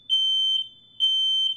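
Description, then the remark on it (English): A smoke alarm sounds two loud, shrill beeps, each lasting about half a second with a short gap between them. The tone is high and steady, with no voices. “Uh-oh. I think his house is on fire.”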